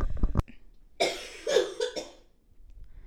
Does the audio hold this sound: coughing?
yes